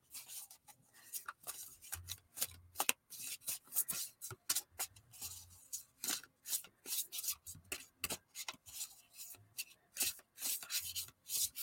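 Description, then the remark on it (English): A Light Seer's Tarot deck by Chris Ann being shuffled by hand for a tarot reading, a steady run of quick papery rubs and soft slaps repeating for several seconds, with no one talking. “And I'm going to just shuffle these.”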